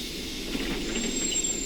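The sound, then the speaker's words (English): A bus pulls away from the stop at Tudley Bridge in fog and darkness, its steady low engine rumble blending with a broad hiss of air brakes and a thin, high whine, with no voices. “As I watched the bus pull away, I was filled with doubt and thought of turning back and going home.”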